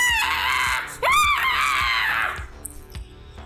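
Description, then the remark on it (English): A voice imitates a monster's shrill, raspy screech: one loud, sustained shriek that jumps sharply in pitch partway through, then cuts off into near quiet. “And she's screeching at you.”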